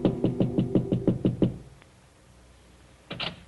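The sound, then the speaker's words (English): A rapid, even run of about eight soft knocks on an apartment door, a short silence, then a quick pair of knocks again, with no voices. “Then as he prepares a drink, there is a soft knock at his door.”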